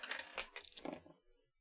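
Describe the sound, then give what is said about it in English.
Four dice clatter and tumble across a hard tabletop in a quick burst of sharp clicks and rattles, rolled for a physique check in a tabletop game, settling within about a second, fairly loud with no talking. “And let me do a physique for him. 4 dice.”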